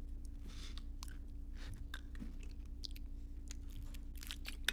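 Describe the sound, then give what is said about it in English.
Someone drinking water near a microphone: a string of soft, wet gulps and mouth clicks at an irregular pace, quiet over a steady low hum, with no talking. “and forgive me, I'm going to have to grab water.”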